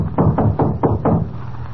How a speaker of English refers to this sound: Ah, here we are. I'll knock.